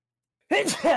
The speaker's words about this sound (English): Bless you. All right, we're good. That was the last one. It snuck up on me.